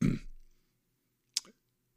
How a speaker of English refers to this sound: I'm sorry, I burped in the mic.